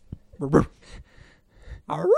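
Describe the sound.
A person imitates a dog barking with their voice: a short voiced yelp, a pause with breathy noise, then a second, louder bark-like call that rises in pitch.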